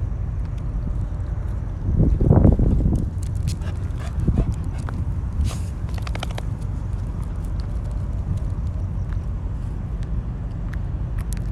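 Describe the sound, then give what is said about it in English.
A young dog scampers about a parking lot and grassy, patchy areas in the dark before sunrise, with scattered pattering footsteps and a couple of short bursts of sniffing over a steady low rumble of wind and background noise. “The young dog is running around the parking lot and the grassy, patchy areas.”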